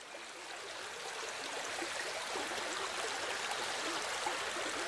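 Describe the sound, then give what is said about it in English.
Lake water splashes and trickles steadily as a woman kneels to gather it, a continuous bright, hissing wash of liquid sound that holds level throughout, with no voices. “Finally she found a lake with water as sweet as honey and knelt down to gather the water.”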